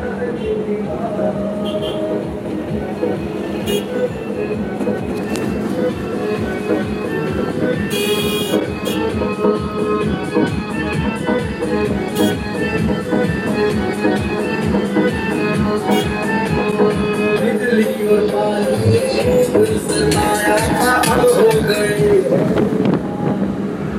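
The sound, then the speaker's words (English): A big election-campaign truck full of people, in front of a rickshaw, rumbles loudly and steadily throughout while playing a campaign song, its droning engine layered with sustained tonal hum and busy road noise, with no pauses. “Right now I'm in a rickshaw, and what you're hearing in the background is the noise of a big truck which is in front of us, and the truck is like basically part of an election campaign, because I recognize the song.”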